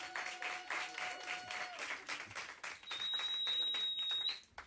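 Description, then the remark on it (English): An audience at a church service applauds steadily for nearly five seconds for a person who came up, a dense wash of many hands clapping that swells slightly before dropping off at the end, with a thin high whine audible partway through. “Oh, we didn't applaud you when you came up.”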